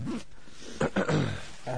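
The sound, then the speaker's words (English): A few rustling, sniffling bursts as someone wipes their nose, short and moderately loud, with a faint low vocal grunt mixed in. “just wiping my nose, you know.”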